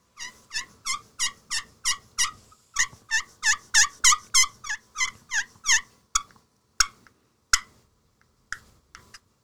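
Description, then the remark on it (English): A Primos Jackpot slate turkey call, broken in half, yelps in a quick, steady run of about fifteen raspy, high notes, then trails off into a few sharp, isolated scratches. Clear, with no talking. “How many turkeys has a Primos jackpot slate call killed?”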